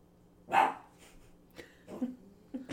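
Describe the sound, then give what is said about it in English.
A small dog, a puppy named Floyd, lets out one sharp, fairly loud bark, followed by a few softer yips and short whines, with no talking. “Puppy!”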